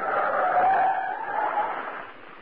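A loud, sustained screech of tires skidding on the road as a fast truck brakes hard, with rough engine and road noise that fades slightly toward the end.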